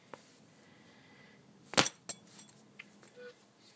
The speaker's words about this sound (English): It's actually a belt.